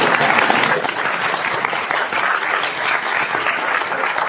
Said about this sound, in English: Well, there's a great thing about being at Princeton. We have a female president. We have a... Yes, you can applaud!